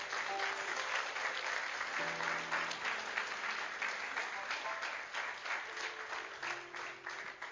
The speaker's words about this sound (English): So what I want to do right now before we continue is I want to give our staff, men, women, volunteers that pour into, I want to give them a round of applause. Let's do that for them real quick.